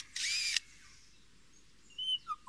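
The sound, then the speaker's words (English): A lyrebird mimics a birdwatcher's camera click and the mechanical sound of a zoom lens: a loud, half-second mechanical whirring burst, then after a pause a few short, high-pitched clicks and chirps, with no talking. “In one recording, the lyrebird can be heard mimicking the click of a birdwatcher's camera, and even the mechanical sound of a zoom lens.”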